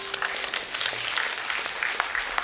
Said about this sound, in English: Somebody ought to clap right there.